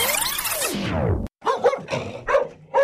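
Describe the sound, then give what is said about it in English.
A long falling whine-like tone sweeps down, breaks off, then a dog barks in several quick, fairly loud bursts with no one talking. “I love this dog.”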